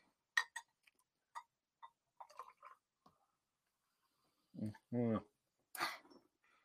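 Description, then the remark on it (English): Fizzing of a carbonated drink: a scatter of small, irregular crackling pops and ticks, followed by a brief voiced sound and a soft burst of hiss. “Listen to how carbonated it is. I can hear it.”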